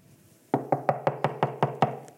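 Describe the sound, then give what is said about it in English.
A rapid, steady series of about eight solid knocks on an apartment door, evenly spaced, after a brief moment of quiet; no voices. “And so while this was going on, there's a knock on the door.”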